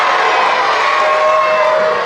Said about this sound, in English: Okay, okay, no booing. Cheering if you're a Cyclone fan.